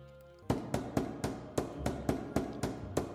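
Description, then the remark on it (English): A deputy knocks on a jammed door: a rapid, steady run of about ten loud, sharp knocks, evenly spaced and starting after a brief quiet moment, with no voices. “I think there's someone at the door.”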